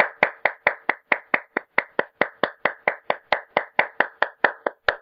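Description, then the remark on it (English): A single person claps their hands in a steady, brisk rhythm, about twenty sharp, crisp claps over a few seconds, each one loud and snappy with no talking. “That was me clapping, by the way, just in case it sounds like some weird noise.”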